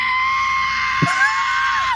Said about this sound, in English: That is a great rock and roll scream. It really is.